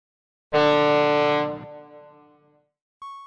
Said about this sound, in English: Ugh, where is that beeping coming from? Okay, I'm so relieved to hear that it's not just in my head. I really wasn't sure.